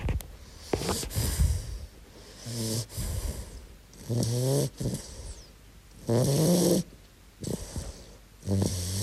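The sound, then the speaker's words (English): A sleeping cat named Mouse snores, a rhythmic run of raspy, slightly whistling breaths repeating every couple of seconds, about five cycles with short quiet gaps and no voices. “This is Mouse snoring.”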